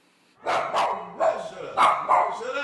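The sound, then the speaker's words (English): A small, fluffy white dog greeting visitors at a family's house barks in a quick series of sharp, yappy bursts, about five barks with brief gaps between them. “A fluffy white handful of a dog greets visitors at the Farron's house.”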